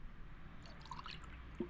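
Milk being poured out, a quiet trickle with light dripping that builds to a couple of louder splashy gulps near the end, with no voices.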